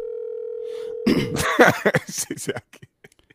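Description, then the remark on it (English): A toy phone gives off a steady electronic tone for about a second and a half, then a burst of rough coughing or throat-clearing noises breaks in and trails off into short scattered sounds. “She got that goddamn toy going.”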